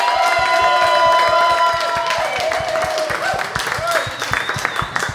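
An audience breaks into loud, steady applause with cheering and a few high whoops over the clapping, sustained for about five seconds and thinning slightly toward the end.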